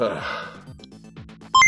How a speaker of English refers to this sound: Calculating computer activated. Computers. Beeps. Boops.